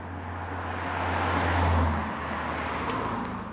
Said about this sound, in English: The people in the camp say they hardly notice the road noise. But to me, it sounds like when you have train tracks right next to your apartment.